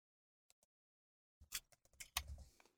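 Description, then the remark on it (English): Two faint, sharp clicks, then a rapid cluster of computer mouse clicks and taps after a brief pause, quiet, with no voices: someone clicking 16 times on a D6 in a digital dice roller. “I clicked 16 times on the D6.”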